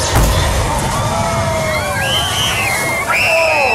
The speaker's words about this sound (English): And then explodes. The entire audience just gets wrecked by water.